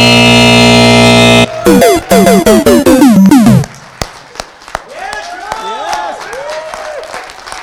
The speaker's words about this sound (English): Timer.